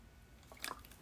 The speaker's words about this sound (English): Let me drink some water, y'all.